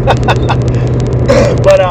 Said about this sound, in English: And I'm like, dude, I better check the audio on this Chevy Cruze. And it was so loud. It would have blown all your eardrums out.